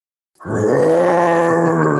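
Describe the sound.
After a brief silence, a man lets out one long, loud, throaty roar, imitating a lion. The growling voice holds steady for over a second.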